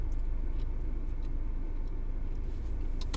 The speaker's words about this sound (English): Sorry, I'm trying to drive, but they're idiots. They're being idiots. There's this truck that's just in the way of everyone.